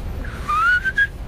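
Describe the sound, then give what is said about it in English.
A person whistles a short, rising and wavering tune in imitation of a blackbird's song, a single clear phrase of about a second over faint low background rumble. “Blackbird whistle first?”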